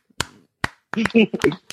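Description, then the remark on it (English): Two sharp, sharp-edged claps land about half a second apart in a slow, deliberate rhythm, then a voice starts talking right after them. “Slow clap.”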